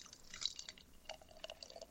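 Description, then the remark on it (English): Beer being poured, heard as a quiet stream of wet splashes and bright fizzy crackles, steady throughout with no voices. “Yeah, we're pouring the next beer.”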